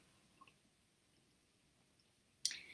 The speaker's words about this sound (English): I'm just going to take another sip of my tea, slow myself down.